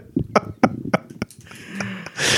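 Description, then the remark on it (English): A series of short, sputtering fart-like blurts, fairly loud, with voices around them, ending in a burst of hissing noise. “Someone let out the wild turkey. Yeah. Talking about the farts”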